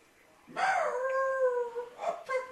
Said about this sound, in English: You got dogs in your room you didn't bring in there? That we didn't bring in here? No, these were dogs that were roaming around outside.